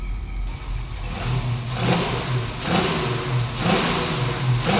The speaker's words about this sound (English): I stepped back as the demon hot rod revved his engine, the ensuing gray exhaust erasing him from view.